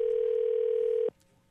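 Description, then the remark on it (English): A telephone ringing tone on an outgoing call placed from a new phone system: one steady, fairly loud electronic tone that holds for about a second and then cuts off abruptly, leaving faint line hiss. “Well, it's ringing, so I guess we're good.”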